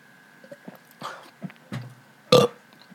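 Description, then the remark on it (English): A loud burp bursts out near the end, following a few softer throaty gulps and swallowing noises, with a faint steady hum underneath and no talking. “Good, my burp?”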